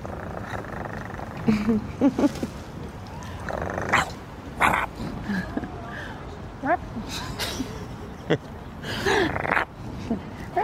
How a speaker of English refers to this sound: Well, I like the sound of your dog. That's as bad as vicious as it gets.